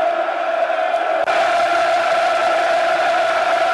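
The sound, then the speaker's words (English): A football stadium crowd at a Leeds match roars in a dense, sustained wall of noise, loud and steady throughout with a strong mid-pitched hum of massed voices and no single speaker standing out. “Mighty wall of noise. Nowhere else like it, dear listeners.”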